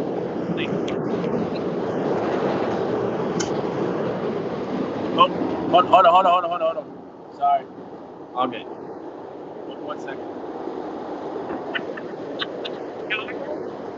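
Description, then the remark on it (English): A Chicago train rumbles past a backyard with a broad, steady roar that fades away after about six seconds, leaving a few scattered clanks and light background noise. “Chicago Train, man. I actually love that just went by.”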